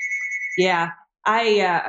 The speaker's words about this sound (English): My phone's ringing here in the background.